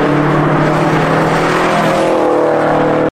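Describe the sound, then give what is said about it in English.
The engine of an STI sports car with a large rear wing roars loudly and steadily, its deep harmonic drone holding for a few seconds before the pitch dips slightly at the end. No voices. “Look at the wing on this car, man.”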